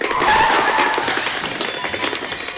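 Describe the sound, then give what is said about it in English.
A car's tires screech loudly in a sharp, sustained skid, the squeal wavering and then giving way to rough, clattering noise as the car swerves and hits garbage cans when someone crosses the street in Pflugerville. No one speaks. “Apparently, when you cross the street, cars swerve and hit garbage cans.”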